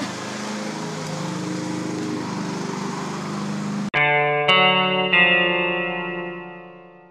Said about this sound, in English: Got to go back to mowing.